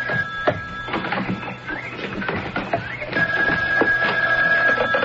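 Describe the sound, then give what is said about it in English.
A telephone rings with a steady, high electronic tone that drops out briefly and resumes, mixed with rapid mechanical clicking and clatter throughout. “Oh, excuse me. There's the phone.”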